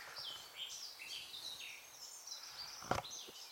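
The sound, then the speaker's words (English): A blackcap sings a continuous, rich warbling song of fluty phrases, clear against a quiet outdoor background, with a brief knock near the end. “Good luck, Mr. Blackcap. He is giving it some money, eh?”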